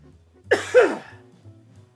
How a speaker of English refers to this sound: And excuse me while I make a disgusting cough.